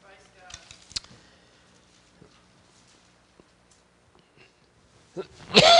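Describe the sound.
After a quiet stretch with a few faint shuffles and soft voice sounds, a sudden loud cough with throat clearing bursts out at the very end.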